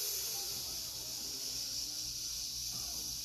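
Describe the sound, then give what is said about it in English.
A person makes a steady, breathy sizzling hiss with their mouth, held unbroken for about three seconds, soft, with no words spoken. “I can sizzle as much as I want without losing my breath”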